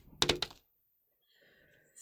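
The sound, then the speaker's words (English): Dice clatter briefly across a table, landing on a total of seven: a quick cluster of three or four sharp clacks, followed by near silence and some faint background sound. “That's a 7 on the dice, plus my freak makes it a 9.”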